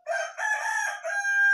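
A cockerel crows once, loud, in three connected bursts ending on a long, held, strained note. There is no other sound in the background.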